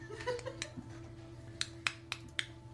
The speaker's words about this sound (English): Alright, I will knock on the door.